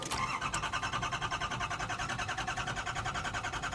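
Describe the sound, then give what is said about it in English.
The engine of a fully restored 1986 Ford Cortina cranks and catches, then settles into a steady, rhythmic idle that chugs evenly and loudly, with no voices present. “Does the engine still work?”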